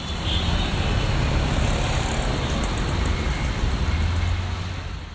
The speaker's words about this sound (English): The city's soundtrack is a cacophony of vehicle horns accompanied by speeding cars whipping up swirls of dust and dirt.